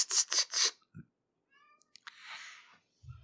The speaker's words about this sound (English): Holy shit. Kitty.